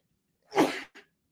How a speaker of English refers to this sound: But … sneezes.